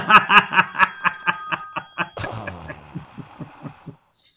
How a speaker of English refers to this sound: All right. That's a text message to my daughter right now. Bless her heart. Oh, yes. Your text messages ring like a phone? No, but I'm sorry. It's a phone call that I texted her back on.